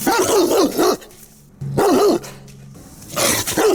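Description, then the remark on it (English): A dog barks and snarls aggressively, as if warning its owners of danger, three loud growling bursts separated by short pauses, each rough and wavering in pitch, with no voices around it. “That's not a nice dog. No, that dog is danger.”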